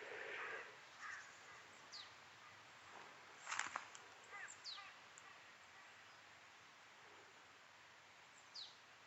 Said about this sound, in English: Now, here's an interesting bird. I'm not sure what that is. Feels like a marsh tit, but